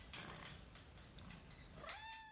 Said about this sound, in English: I have two kittens. Their names are Haku and Howl. I will edit in sounds of them meowing for you.